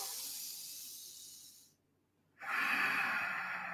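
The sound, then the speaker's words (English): A slow, controlled breath drawn in with an airy hiss, a brief pause of silence, then a longer, fuller exhale rushing out steadily, with no talking. “And then you can just do normal controlled breathing.”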